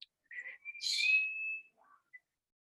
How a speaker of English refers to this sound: Now, when I was seven, I learned to whistle. Can you whistle?